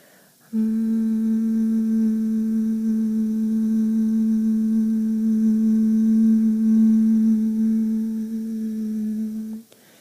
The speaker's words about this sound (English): And now take a really quick journey through your body as you're humming. You can keep humming. Don't stop humming because I'm talking. And let the humming release any tension that you may find.